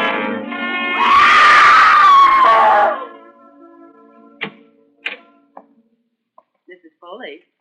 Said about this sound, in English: You mustn't scream like that. I wasn't screaming.